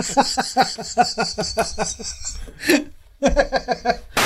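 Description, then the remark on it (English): A single sharp, breathy sneeze bursts out midway through a stretch of rhythmic, pulsing laughter, followed by a brief pause before the laughter resumes. “I thought it was just because I sneezed gay.”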